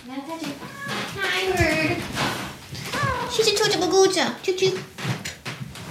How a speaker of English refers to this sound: She's done meowing, now I'm here.